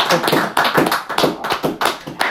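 Hands clapping in a quick, steady run of sharp, close-up claps, dense enough to sound like a few people applauding together for a couple of seconds, with no voices.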